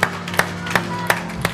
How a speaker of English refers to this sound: Amen? Amen. Give Him another hand clap and a shout. What a great God. Hallelujah.